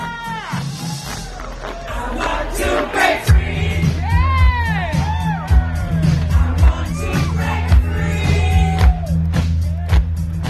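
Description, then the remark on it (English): A crowd of over 500,000 people at Denver Pride in Colorado cheers and whoops continuously outdoors, with many overlapping shouts and high yells rising and falling, over a steady low rumble that sets in a few seconds in. “That's a crowd of over 500,000 people cheering at Denver Pride.”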